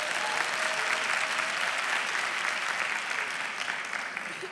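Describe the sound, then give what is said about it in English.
A crowd of women claps their hands to affirm that what was said is true, in steady, dense applause that holds at an even level for several seconds, then eases slightly toward the end, with no talking over it. “If that's true, women, do just clap your hands if that's true.”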